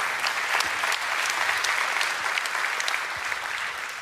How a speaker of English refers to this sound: Anybody thankful for the grace of God? Give him a huge round of applause here today.